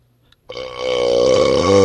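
After a brief silence, one long, loud burp rumbles out abruptly, a low, raspy, buzzing belch that swells and holds steady for over a second without trailing off.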